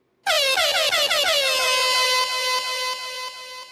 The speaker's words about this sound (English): Air horns!